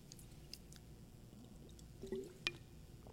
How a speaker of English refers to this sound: I hate that I have to take drinks of water while I'm talking. Forgive me.